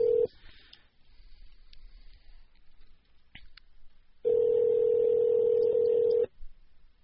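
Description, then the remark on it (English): A telephone call being placed: a brief tone, a few faint dialing beeps, then a loud, steady ringback tone sounding for about two seconds over a quiet line. No one speaks. “So go ahead and call that number.”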